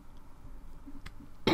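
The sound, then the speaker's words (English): A short throat clearing: a quick rasp followed moments later by a louder, harsher burst at the end, with no speech around it. “Might have to clear my throat a few times.”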